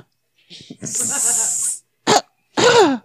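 Loud coughing in three harsh bursts: a long, rasping, drawn-out cough followed by two shorter, sharp coughs after brief pauses.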